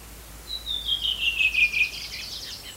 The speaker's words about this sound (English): The bird song you can hear was recorded by Christopher Milne, an ornithologist and filmmaker, and it's one of several recordings from the Scottish Ornithologists Club. Bird enthusiasts might recognise the sound of a redwing and willow wrens.